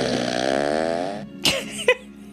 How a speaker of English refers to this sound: She's got to have a fart machine.